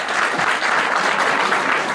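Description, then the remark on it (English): An audience at a showing of the film Ghost claps in a steady, dense burst of applause in answer to a poll of who has never seen the movie; the applause stays loud and even throughout, with no voices standing out. “Because also I've been told by several people in the lobby already, and let's do a formal poll, how many people here applaud if you've never seen Ghost?”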